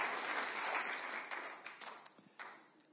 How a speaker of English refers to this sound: You can say hello to him by clapping. That's good. Thank you.